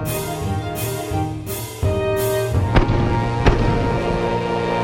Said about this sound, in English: The answer is A, cannons, like on a pirate ship. Most modern orchestras don't use real cannons anymore, but some still do.